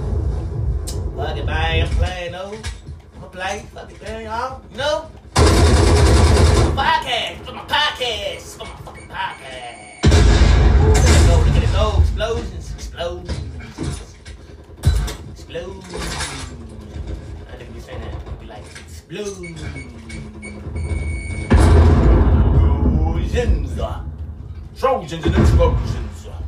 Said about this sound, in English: Explosions.